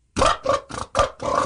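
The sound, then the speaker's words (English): A voice imitates a car engine cranking with five quick, rough, throaty bursts in a steady rhythm, moderately loud, and no other sound around it. “When you start the car, right, does it go?”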